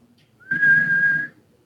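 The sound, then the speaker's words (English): A person whistles a single steady, flat note lasting under a second, with a faint breathy hum beneath it, imitating a plain whistle with no tune. “So just a straight standard whistle then, because it'd almost be like, I was expecting that it might have like a weird, like little variation to it, like a little bit of like a melody or something.”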